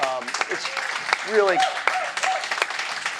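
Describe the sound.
An audience at a conference claps in a dense, steady burst of applause for the organizers, with a few voices cheering and calling out over it.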